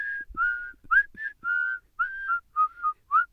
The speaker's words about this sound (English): But you can whistle in tune. Can you do the Kill Bill?